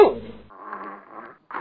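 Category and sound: animal, dog growling and barking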